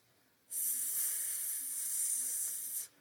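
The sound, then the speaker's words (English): A person makes a single long, steady, bright hissing sound like a snake, lasting a couple of seconds before cutting off. “Oh dear, I sound like a snake.”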